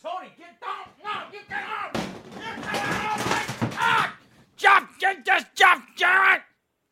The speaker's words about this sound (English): He's banging on the door to the studio.